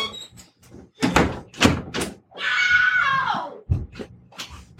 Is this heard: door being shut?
yes